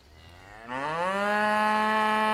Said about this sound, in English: there are different accents for cows that moo